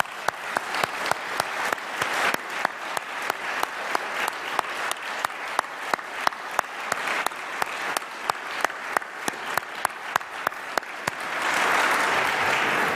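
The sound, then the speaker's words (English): An audience breaks into steady, lively applause, dense crisp clapping with sharper individual claps standing out, holding strong throughout and swelling into a fuller wash near the end. “And I applaud you”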